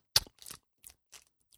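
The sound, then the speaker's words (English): A packet of Fruit Gushers snacks being torn open: a sharp crinkly rip followed by several softer plastic rustles and crackles in short, uneven bursts, with no voices. “These are the fruit gushers, so I want to see what they're like.”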